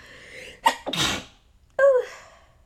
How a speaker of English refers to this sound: I sneezed.